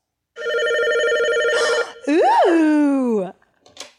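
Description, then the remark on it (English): A steady, pulsing electronic telephone ring sounds for over a second, followed by a swooping, rising-and-falling tone, then a brief faint hiss. There is no talking over it. “Now put the sad violins away and pick up the phone or call him yourself.”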